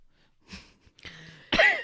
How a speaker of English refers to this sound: I can like feel liquid in my throat and I gotta cough it out.